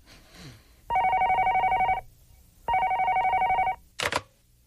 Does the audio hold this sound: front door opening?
no